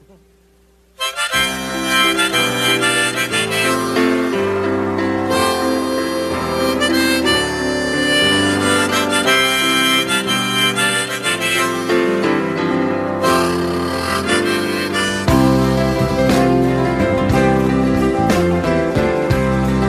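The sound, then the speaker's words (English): Two pianos play a lively live duet, loud and full with dense overlapping chords and runs, starting after a brief moment of quiet and continuing without pause. “So each trying to outdo the other on the old ivories there.”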